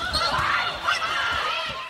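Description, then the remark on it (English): The U.S. women's volleyball team erupts in celebratory screams after winning their game against China, several high-pitched shrieking voices overlapping loudly and continuously for a couple of seconds, with faint low thumps and court noise underneath. “It's the U.S. women's volleyball team winning their game against China thanks to 34 points scored by Jordan Thompson and a ton of cathartic team screams.”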